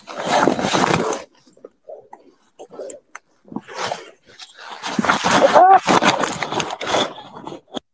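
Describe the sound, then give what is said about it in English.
A police officer's heavy, strained breathing, recorded on his body camera, comes in loud, ragged bursts, mixed with rough rustling and scuffling noises and muffled voices, with brief quiet gaps between the harsher stretches. “Can you hear the breathing? The cop's breathing, the stress?”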